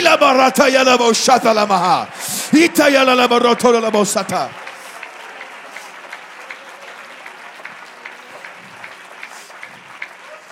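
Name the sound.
audience clapping hands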